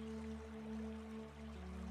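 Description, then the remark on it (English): Soft, steady rushing of flowing river water, faint and continuous, blended beneath a low sustained tonal drone with no speech. “And as you approach the river, you can hear the purity of the water flowing through the river as the sound of the river relaxes you more and more.”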